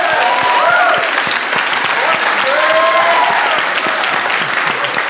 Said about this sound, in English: And I want everyone to just give an insane round of applause for all of these very smart people.